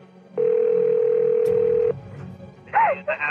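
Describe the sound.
A single steady telephone ringback tone drones for about a second and a half over a faint hiss, then cuts off, and a strained voice briefly speaks over the line.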